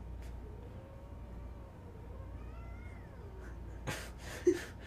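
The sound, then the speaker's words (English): An angry female cat lets out a long, drawn-out, wavering yowl that rises and falls for several seconds, followed by a couple of sharp, noisy bursts like hissing or spitting, over a low background hum. “She got vicious. No! No, you can't leave me.”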